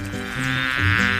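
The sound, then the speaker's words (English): A bee buzzes steadily in flight, a loud droning hum that wavers slightly in pitch as it moves, heard alone for just over a second, as the cartoon bee Maya flies back home. “Maya collected all honey she could and buzzed her way back home.”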